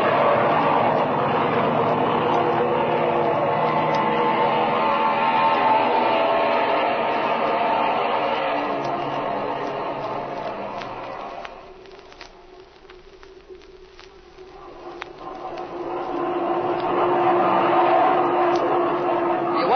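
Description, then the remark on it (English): A steady, loud engine roar from an already warmed-up aircraft engine, oil temperature at 110, fills the scene, dips briefly in the middle, then swells back up to full power as the aircraft builds speed for takeoff. “Flash had the engine running a while ago, so it's still warm. Yeah, go ahead and take her off.”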